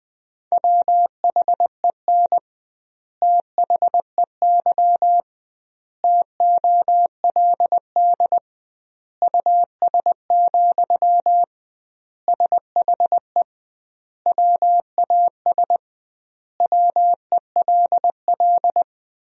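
Morse code practice tones at 20 wpm with double word spacing, sending sentences built from the top 400 words: a steady mid-pitched beep keyed into quick dots and dashes, sent in short bursts separated by longer silent gaps between words.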